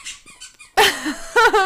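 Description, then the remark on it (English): A dog named Misty chewing her squeaky toy, giving a couple of soft, thin squeaks followed by two loud, wheezy squeals, with no voices. “People like the background weirdness, like Misty squeaking her toy, but she should still leave it alone.”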